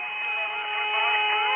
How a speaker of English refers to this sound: Have a listen to this. You'll get an idea of what the sounds like, and you'll hear a bit of the chatter. And that music even sounds outer spacey, doesn't it? You hear that? That whistling sound?